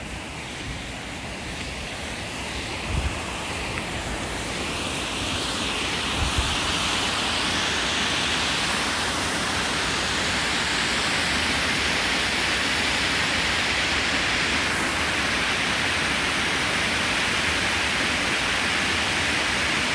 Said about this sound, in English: Headed up past the stream, which is very, very full.